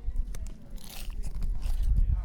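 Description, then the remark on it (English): Loud crunching as someone bites into the crisp tortilla chips of a walking taco at the Munzee Mecca 2024 event, followed by a couple of seconds of steady, crackly chewing with no talking. “You got to hear the crunch.”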